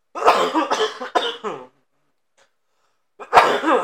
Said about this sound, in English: I've been smoking weed so long that, like, dude, nowadays, like, I've had this cough for, like, maybe a month, man. Maybe, like, 2 months.